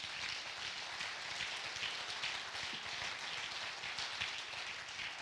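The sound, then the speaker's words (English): An audience claps hands to thank God, in a steady, dense wash of applause that holds at an even level throughout, with no voices heard over it. “I think we ought to clap our hands and thank God for that.”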